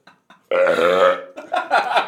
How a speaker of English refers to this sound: Ah, burp stinks, dude. I know, man.